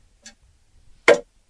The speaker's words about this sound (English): Got the old clock going. I like it. That, you know what? That scared the crap out of me. I thought we had a technical problem.